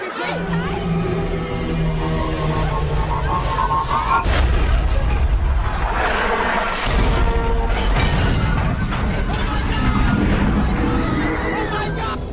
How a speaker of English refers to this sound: The trailer shows almost nothing. Like, you get a party atmosphere, and then there's like an explosion. You don't know what's going on.